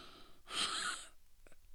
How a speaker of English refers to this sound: Me creepily breathing.